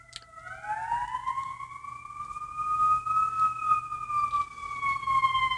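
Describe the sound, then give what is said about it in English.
A wailing emergency siren sweeps upward, then holds a long, steady tone that dips slightly near the end, clear over a low rumble of road traffic. “There's a siren.”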